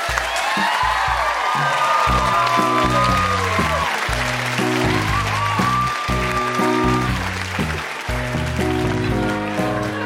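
An audience applauds loudly and steadily for the whole stretch, a dense wash of clapping with a few whoops and cheers rising over it and low sustained tones underneath.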